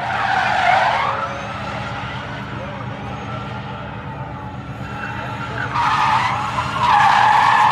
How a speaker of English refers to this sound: It's a, mostly tire squeal.